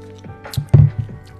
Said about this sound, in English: I need to lather up first.